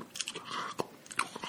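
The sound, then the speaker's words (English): Wet, smacking chewing with crunchy bites, a quick series of sharp clicks and smacks in an uneven rhythm, with no talking over it. “sometimes we do have, we've had some things where we're eating and we're always very worried that there is like smacking noises.”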